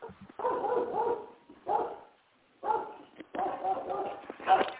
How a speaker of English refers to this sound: Well, I couldn't even hear you. The dog was barking. Somebody was at the front door.